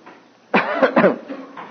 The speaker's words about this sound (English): Let's all cough together and it'll be over. Good, that was a good one. Don't practice, just cough if you have to.